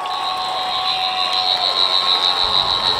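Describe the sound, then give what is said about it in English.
A sonic screwdriver whirs with a steady, high-pitched electronic whine, holding one shrill tone with a lower hum beneath it and a slight pulsing waver throughout. No one speaks. “Oh, okay, I'll get my sonic out.”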